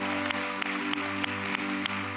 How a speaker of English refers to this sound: Amen. Come on, let's give the Lord a great round of applause this morning.